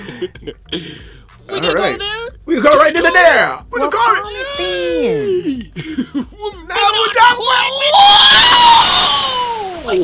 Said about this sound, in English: You're screaming way too loud for me. Stop the yelling.